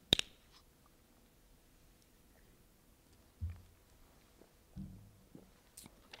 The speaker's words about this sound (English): One sip of water here.